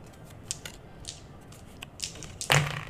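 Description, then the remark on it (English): Irregular crunching and cracking hits as the Shield Guardian pummels a statue into dust, with several sharp gritty bursts building to one loud, heavy crack near the end. No voices. “You just hear a crunching and cracking and pummeling. As the Shield Guardian pummels the statue into dust.”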